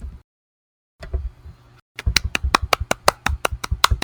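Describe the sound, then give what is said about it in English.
A brief rustle gives way to a steady run of about a dozen sharp hand claps in an even, quick rhythm, each crisp and bright, with no voices. “Can you hear the clapping?”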